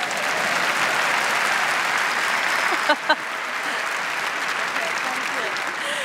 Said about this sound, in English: Which means you've also got to clap